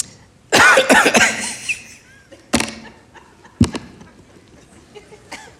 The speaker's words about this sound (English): You know how after you get the flu, it'll hang in here? And it's like if you breathe too deeply, you know you're going to cough? It's been like me for like the last week.